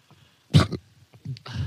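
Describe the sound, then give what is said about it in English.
A dog makes a few abrupt noises: a sharp breathy burst, then a brief low grumble and another rough, hissy burst, with quiet gaps between them and no talking. “The dog. Doggo. The doggo.”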